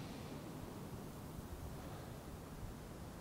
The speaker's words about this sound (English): Listen to the waves.